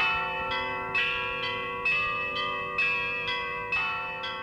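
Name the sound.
church bells ringing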